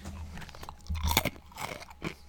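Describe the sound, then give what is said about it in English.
Crisp crunching of a snack being chewed, several irregular bites and grinding crunches in quick succession with no talking. “Chew, chew, chew.”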